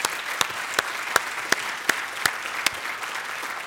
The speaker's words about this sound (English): If you receive that today, would you give a clap offering to our God?